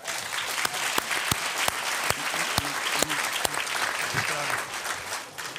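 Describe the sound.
An audience claps steadily in a dense, sustained round of applause with scattered sharper claps. It holds at an even loudness throughout, with faint voices murmuring underneath.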